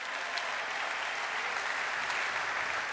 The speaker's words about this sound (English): Give him a clap, man.